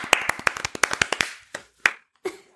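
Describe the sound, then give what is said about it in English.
A short burst of hand clapping, a quick run of sharp claps from one or two people, thinning out into a few scattered final claps after about a second. “Round of applause for them talking about it on the next show.”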